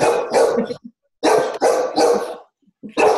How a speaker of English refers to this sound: Sorry, my dog's obnoxious.